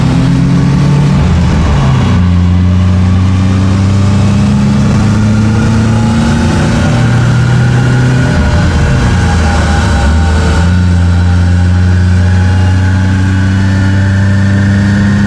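A loud car engine on a rolling road revs steadily as the car is put through its paces in all gears, thrust and braking being automatically measured; its pitch steps up and down through gear changes with brief dips between, a continuous mechanical drone with no voices.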